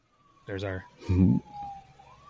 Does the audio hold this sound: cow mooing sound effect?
no